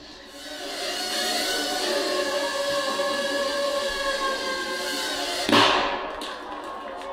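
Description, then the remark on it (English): A steady high-pitched mechanical whir from a palm-sized device with cameras and sensors fills the scene, then a single sharp bang as its 3-gram shaped explosive charge detonates against a dummy's skull, in the middle of the forehead, before the whirring carries on. “That little bang is enough to penetrate the skull and destroy the contents.”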